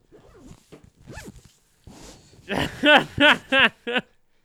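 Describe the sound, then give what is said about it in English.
A jacket zipper is zipped up in several quick, raspy strokes, starting softly and ending in four louder pulls with brief pauses between them. “I want to see what you look like when you better zip that, bitch that up.”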